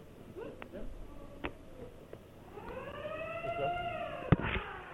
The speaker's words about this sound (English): Is your lunk alarm working? Or is it just the light, or does the sound work? We'll try it out right now. Yep, press it for like 5 seconds so I can hear it.